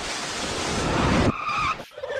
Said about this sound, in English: I don't know if that deserves a car crash.